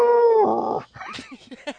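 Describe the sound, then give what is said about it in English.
A person imitates a cow's moo, a loud, strained bellow that slides downward and turns raspy, more like an elephant's call, followed by a few quick spoken syllables. “Oh, I tell you, I tried to moo this morning, and it sounded more like an elephant.”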